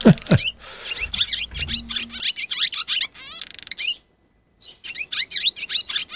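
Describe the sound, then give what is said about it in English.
A barn swallow sings a rapid, chattering stream of high twitters and buzzy trills, loud, pausing briefly before resuming its bright, scratchy warble. “Barn swallow. Oh, I got the wrong bird.”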